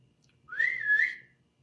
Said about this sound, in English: Oh, girl, who he whistling at? He whistling at me.